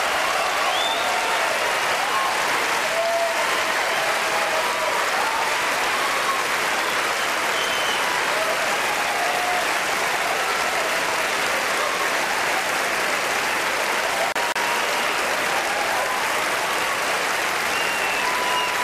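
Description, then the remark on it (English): A large audience at the 2003 Oscars applauds steadily as Roman Polanski wins for The Pianist, a dense sustained wash of clapping with scattered cheers and whoops rising above it, Meryl Streep among those cheering, continuing without pause for nearly twenty seconds. “You can see her right there in the background cheering for Roman Polanski.”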